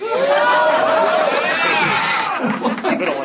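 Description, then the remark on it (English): A crowd reacts with a loud, mixed swell of chuckles, scattered laughter and murmuring voices, overlapping continuously for about three seconds before breaking into choppier bursts. “Mixed reaction to that.”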